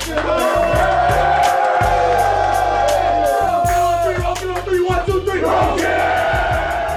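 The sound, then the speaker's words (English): A team loudly cheering in the Illini locker room after beating number 2 Michigan: overlapping shouts, whoops and hollers from many voices, with a steady thumping beat pounding underneath throughout. “The sounds of the Illini locker room after pummeling number 2 Michigan earlier this week.”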